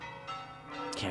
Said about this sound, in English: And just as he says guards, you hear warning bells outside. What in the world is going on out there?